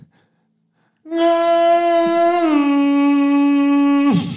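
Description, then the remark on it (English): A single voice lets out a long, loud, sustained wail imitating a siren-like whale call, holding a steady pitch before dropping slightly and then cutting off abruptly, with silence beforehand. “Yeah, that's a whale. Like, you know, a siren, like, whoa.”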